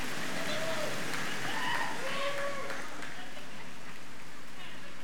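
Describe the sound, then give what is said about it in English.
A dense, steady hiss of rain drumming on a church roof during a service, loud and continuous, with faint voices murmuring underneath. “I'm going to try to speak over the loud noise here of rain hitting the roof, or not.”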